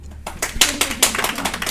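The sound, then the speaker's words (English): A short burst of audience applause: many hands clapping in a dense, crisp patter that starts abruptly and holds steady at moderate loudness, with no voices over it. “I got applause.”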